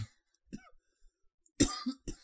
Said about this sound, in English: Listen to them little cough. Good grief.